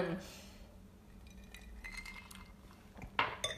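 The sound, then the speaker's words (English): Glasses of bourbon and wine clink together in a toast, a bright ringing tap near the end followed by a second lighter touch, with soft voices and background noise underneath. “We're drinking bourbon and wine. That's okay. Okay, cheers.”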